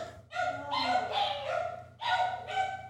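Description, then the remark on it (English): Dogs yip and bark excitedly in a rapid string of high, whiny, overlapping cries, fairly loud, with only brief dips between outbursts. “So you're just going to have to deal with a little bit of the dogs going crazy.”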